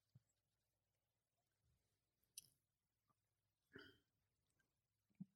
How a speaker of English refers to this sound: All right. So I'm going to give it a nostril. Wow. It smells old. All right. Just a sip.